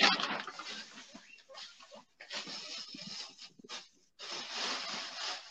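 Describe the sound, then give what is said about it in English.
Guinea pigs while their dirty cage is being cleaned: scratchy rustling and snuffling in uneven bursts, with short pauses between, and no one talking. “Are you with your guinea pigs? Yeah. I'm just cleaning the cage a bit.”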